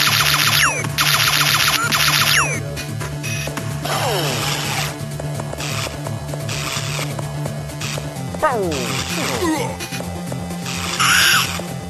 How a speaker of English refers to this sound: That's the boss screaming, don't worry. Oh, that's the boss. I was worried.